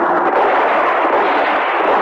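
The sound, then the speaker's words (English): A loud, dense barrage of gunfire as smugglers open fire on police helicopters during a bust, shots blurring into a continuous roar of crackling bursts that never lets up across the whole stretch, with no voices heard. “They're opening up on the choppers.”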